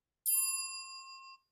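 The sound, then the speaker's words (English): A single bright bell ding, like a notification chime, strikes sharply and rings out cleanly for about a second before cutting off. It stands alone with no voices over it. “If you haven't already, please make sure to like, subscribe, and click the notification bell.”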